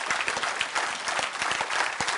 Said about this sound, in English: And not everybody can do it all, but I'm going to wait while you clap your hands right there. Will you do it?